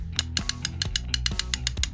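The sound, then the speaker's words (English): A pulley wheel ratchets as it's set while a tension wrench is held in place, giving off a quick, steady train of about a dozen sharp metallic clicks over a low mechanical rumble, with no voices. “hold this tension wrench in place while I set the pulley wheel.”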